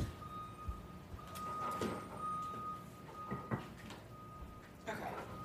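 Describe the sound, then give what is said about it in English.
A balcony door is handled and shut with a few sharp knocks and thuds, while a steady reversing beep and rumble from a garbage truck dumping outside the balcony carry in. “But hold on, let me shut my balcony door.”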